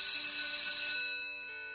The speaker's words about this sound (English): That's the first period bell.